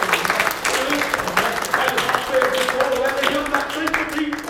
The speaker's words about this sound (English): I want somebody to give God a great big hand clap of praise.